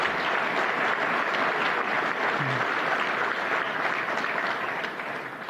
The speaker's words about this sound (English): Please give them a round of applause for their leadership.